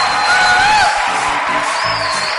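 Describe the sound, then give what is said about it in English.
A crowd applauds and cheers loudly and continuously for the dancing stars, a dense wash of clapping with high whistles and whoops rising above it throughout. “And then I also want us to j'aimerais aussi que put our hands together and shout for the dancing stars.”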